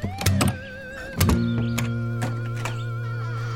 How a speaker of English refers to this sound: There's a trick to the door. Pull the knob and push against it as you're turning the key.